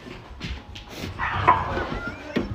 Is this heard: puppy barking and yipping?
yes